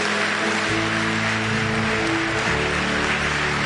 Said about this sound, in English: Clap for yourselves.